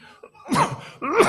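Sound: cough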